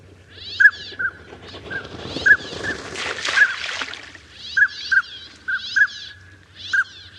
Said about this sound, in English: Most folks that have been hunting for a while will recognize the distinctive sort of whistle, as we call it, of the drake.